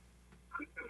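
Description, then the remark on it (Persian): Television sound bleeding through a caller's phone line during a call-in to the TV program Ganj-e Hozour: thin, band-limited voice-like bursts, muffled, coming in two short swells over a steady low hum. “بله بله خانم، تلویزیونتون رو لطفا خاموش کنید، با تلفن صحبت کنید.”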